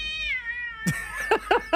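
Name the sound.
cat meowing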